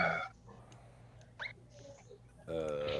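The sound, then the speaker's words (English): A dog lets out a short, soft whimper during a quiet pause, with faint breathy sounds around it and people talking just before and after. “Are you having a moment with your dog?”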